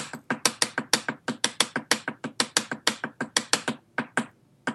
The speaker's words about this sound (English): All right, so paradiddle-diddle.